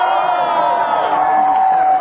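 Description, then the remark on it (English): An audience claps and cheers in a dense, steady roar that stays loud and even for about two seconds, with whoops and voices blended into the wash of applause. “Thank you for clapping.”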